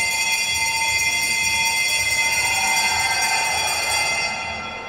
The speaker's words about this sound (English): That, ladies and gentlemen... was not Warnie. Was a bell ringing. That's how you ring a bell.